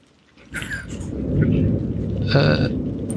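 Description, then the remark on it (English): Heavy rain pours down steadily while deep rolls of thunder rumble underneath, swelling after a quiet start and staying loud throughout, with no voices. “Yep, Isaac walks out a few paces and looks left, right, forward, just trying to see if you can see anything in the heavy rain.”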